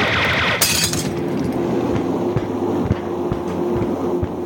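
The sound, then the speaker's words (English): Heavy army boot steps thump on the metal fuselage of a Junkers Ju-52 transport aircraft, a few dull irregular thuds over a steady droning engine hum, after a brief sharp crash near the start. “It sounds uncannily like army boots on the fuselage above our heads.”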